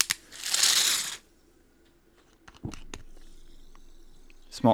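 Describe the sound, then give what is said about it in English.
A can of YK sparkling water cracks open with a sharp click and a loud, breathy hiss of escaping gas, followed by a few quieter clicks and faint handling noises. “Cheers. Small explosion of the YK.”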